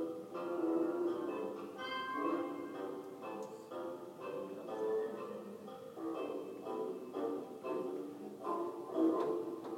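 A steady ticking-clock effect runs through a bouncy orchestral novelty tune, the even ticks clicking in rhythm alongside the melody at a moderate, consistent level with no voices.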